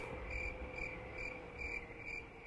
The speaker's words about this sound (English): I'm just going to click on the crickets now. Hold on, there we go.